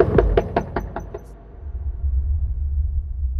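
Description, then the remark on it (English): A quick, steady run of about six or seven firm knocks on a front door, followed by quiet with a low outdoor rumble in the background. “I mean, surely if he's in, he answers his door.”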